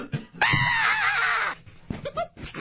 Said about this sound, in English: What is that? That's the worst scream I've ever heard.